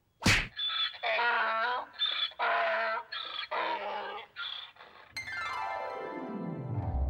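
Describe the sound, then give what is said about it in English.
A single sharp punch lands on a donkey with a loud whack, followed by a run of the donkey's agitated braying and growling cries, then a long descending whistle-like sweep at the end. “So, you infuriated the donkey by punching it.”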